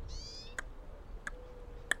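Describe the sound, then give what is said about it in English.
A circling raven gives a soft tick-tock call: three crisp, evenly spaced knocking clicks, quiet, preceded by a brief high warbling note, over faint low background rumble. “He vocalizes. Not cluck. It sounds more like a gentle tick-tock, slightly seductive, longing as if saying, "Oh, I want that.”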